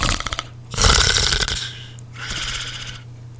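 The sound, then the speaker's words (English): A person imitates snoring, making two drawn-out, raspy, breathy snores separated by a short pause, with a faint low hum underneath. “And that means I'm like snoring. That means I fall asleep.”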